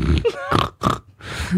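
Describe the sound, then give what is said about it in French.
A person imitates a pig's oink with a few rough, nasal grunting bursts in quick succession, ending in a longer breathy snort, moderately loud with no other talk. “En réponse, j'ai fait un son de cochon.”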